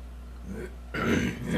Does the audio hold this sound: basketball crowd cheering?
no